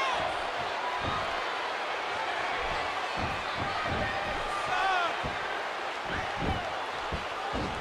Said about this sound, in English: Oh, how disrespectful was that slap? He does it again.